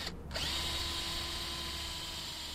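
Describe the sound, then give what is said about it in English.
A power drill, used while installing a solar roof in River Edge, New Jersey, spins up almost at once and then runs at a steady, even whir. Its motor whine holds one pitch for a couple of seconds, with no voices over it. “helping to install a solar roof for George Gladwell in River Edge, New Jersey.”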